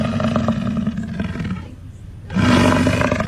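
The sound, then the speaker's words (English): A lion roars twice, loud, a deep rumbling bellow with a short breathy pause between the two calls and no voices over it, played as the secret sound on the Jay and Kevin Show. “That is a lion.”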